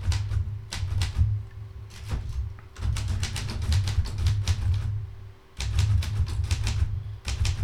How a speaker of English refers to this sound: We've got everything set up, including my favorite Royal typewriter. 1945 Royal. I think it's Tom Hanks' favorite model, actually.